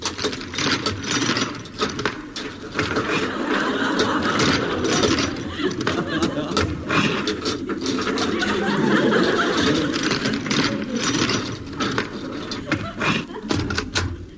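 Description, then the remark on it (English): A long stretch of mechanical clicking and ratcheting, like bolts and a lock being worked, followed by a door creaking open, steady and fairly loud throughout. “Took a long time to open a door. Oh, the door's open.”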